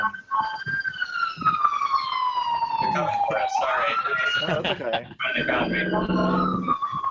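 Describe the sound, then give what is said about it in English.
An emergency vehicle siren wails outside in New York, its pitch sliding in long sweeps and staying fairly loud for the whole stretch, while a person keeps talking over it. “New York, yay, sirens.”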